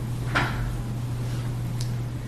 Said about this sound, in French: je ne sais pas si on pourrait ouvrir la porte quelques couple de minutes. Ça ferait bouger un peu l'air.